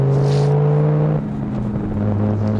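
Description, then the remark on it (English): Steady engine hum of a car driving through a busy intersection on Silver Dart, with sustained low tones that shift pitch partway through as it changes speed, fairly loud with road rumble underneath. “And we're just crossing the intersection now.”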